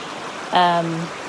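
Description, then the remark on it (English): A creek on the Manistee River Trail in Michigan flows with a steady rushing wash of water while water is being filtered from it, and a short voice-like tonal sound rises briefly over it partway through. “All right, so first time for filtering water was in this creek.”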